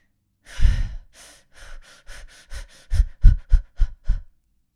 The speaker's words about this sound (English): Maybe it's taking deeper, slower breaths in, maybe doing a 4 count, holding for 4, and releasing for 4. Or maybe it's taking shallow breaths. And just breathing in.